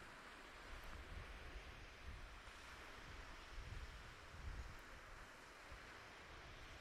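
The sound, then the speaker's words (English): Ocean waves wash and break continuously on a windy shore, a steady broad roar with low gusty rumbles of wind buffeting the microphone. No voices, just surf and wind. “If I whispered and got close to the waves, I think it would be kind of frustrating to listen to because you wouldn't be able to make out what I'm saying.”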